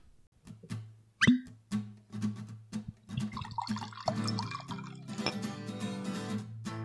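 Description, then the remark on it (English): Whiskey is poured into a glass: a sharp clink of glass, a few drips, then a steady gurgling pour that fills the last few seconds. No one speaks. “So let's do pour.”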